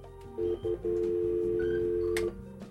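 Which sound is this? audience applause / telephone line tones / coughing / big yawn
telephone line tones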